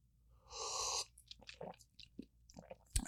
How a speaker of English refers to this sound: Let me take another sip.